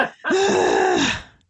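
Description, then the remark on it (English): A voice imitates heavy breathing: one long, loud, voiced gasping exhale with a groaning tone, lasting about a second, with no other talk. “I'm just like, we just like start breathing.”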